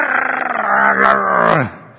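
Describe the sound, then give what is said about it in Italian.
A person's voice imitates a dog's menacing growl from behind a fence, a loud, rough, sustained snarl lasting about two seconds that sinks lower in pitch before cutting off. “Io ho visto che il diavolo tante volte è come col cane, no? Che tu passi per strada, c'è la recinzione e”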